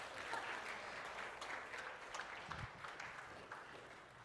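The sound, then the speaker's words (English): An audience applauds as guests are invited up to a table to take questions, dense overlapping claps filling the space at a moderate level for several seconds without pause. “Let's give them a round of applause so there's not awkward silence.”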